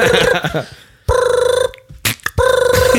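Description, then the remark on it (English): A voice mimics an old-fashioned telephone ringing, producing three loud, trilling rings separated by short pauses, with no other talking. “He's miming it. An old-timey phone.”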